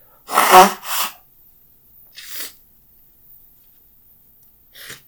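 Someone blows their nose hard into a handkerchief: two loud, breathy nasal bursts in quick succession, then softer sniffs and blows after pauses, with no talking.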